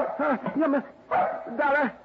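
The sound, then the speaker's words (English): A female dog gives four drawn-out, pitch-bending barks in a sing-song phrase, two quick ones, a pause, then two more, fairly loud with nothing else underneath. “Do you hear? She's saying happy holiday dog food.”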